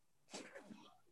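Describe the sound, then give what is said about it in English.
A single sharp sneeze bursts out, a quick breathy explosion that fades within a second against a quiet background. “Bless you.”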